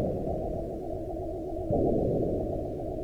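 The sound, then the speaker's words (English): A steady industrial drone hum fills a dim, empty school hallway with clean floors and tidy lockers, low and continuous with no breaks, swelling slightly louder partway through. No voices or other sounds break the constant rumble. “I am in dim light on clean floors near tidy lockers. The sound is drone hum industrial.”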